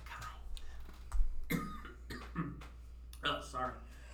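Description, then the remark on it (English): A person clears their throat and coughs several times in short, rough bursts, with brief pauses between them and a low background hum. “it's her cough drop. that's me. I don't know what it is. Hold on, sorry, I got this.”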